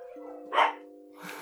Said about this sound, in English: Dogs are going nuts.